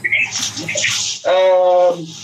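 Water poured onto hot sauna stones splashes and sizzles for about a second, a hissing burst, followed by a brief steady whistling tone that fades out.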